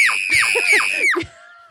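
A loud, sustained high-pitched shriek lasting over a second, with wavering harmonics and a few lower gasping undertones, cutting off abruptly into near silence.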